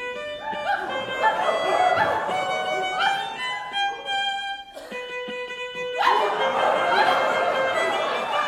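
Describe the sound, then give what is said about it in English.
An audience at a musical performance imitates dogs, with overlapping barks, yips and whines from many voices at once, mixed with sustained whistle-like tones and whistling, lively and fairly loud throughout. “So when the audience started barking like a dog or whistling...”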